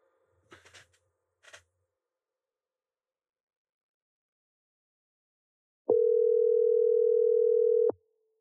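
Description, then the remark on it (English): A couple of brief handling clicks, a long stretch of silence, then a loud, steady phone dial tone after a dropped call that holds for about two seconds before cutting off abruptly. “We gotta get you back on the line.”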